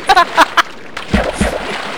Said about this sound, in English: Yeah, I hear rain! That's earth. That's... This is rain! That's going to be water under that. Waterly!